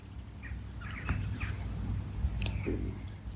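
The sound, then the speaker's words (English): Birds chirp and tweet in short, scattered bursts, fairly faint, over a steady low background rumble. “The birds singing in the background, tweeting away.”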